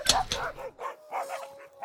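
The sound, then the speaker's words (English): Wolves released from a castle's kennels bark in a quick, uneven series of sharp, harsh yelps, the first two loudest, then several softer barks over a faint steady tone. “And so the flying monkey, a monkey and farmer with flying wings who dressed like a sort of bellhop for some reason, flew down to the castle's kennels and released the wolves.”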